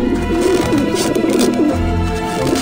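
pigeons cooing

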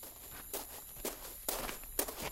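footsteps walking

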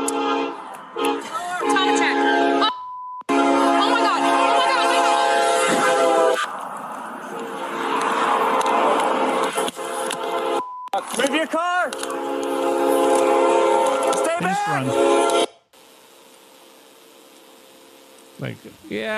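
train passing with horn

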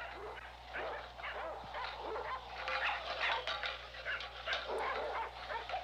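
small dog barking

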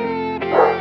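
dogs barking

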